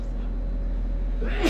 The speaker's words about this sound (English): Bless you. Bless you. God bless you.